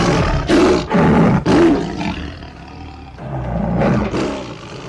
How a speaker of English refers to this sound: he's up against a lion and he's doing anything he can to not be eaten.